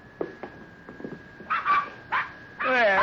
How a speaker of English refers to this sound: Puppies! Yeah. Oh. That darn Rube, he went and had himself a batch of puppies.